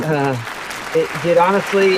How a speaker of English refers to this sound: They're going wild. Yeah, they can't hear you right now, Casey. They're clapping too loud.